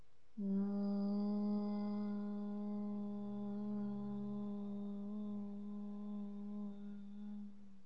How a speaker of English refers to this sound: Inhale through your nose. Hum on the exhale. Inhale through your nose. Exhale through your nose, making the humming sound.